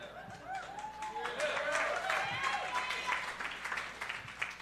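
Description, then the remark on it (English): Light, scattered applause from a small audience, a few hands clapping unevenly for several seconds while voices murmur and call out over it. “I expected a little more applause, but that's okay.”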